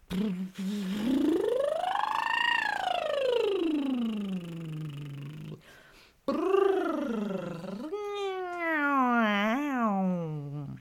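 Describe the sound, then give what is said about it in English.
Two buzzy lip trills made as a voice exercise, with no talking: the first swoops smoothly up in pitch and slowly back down, and after a short pause the second wavers and wobbles before sliding off. “What if you let your lips trill?”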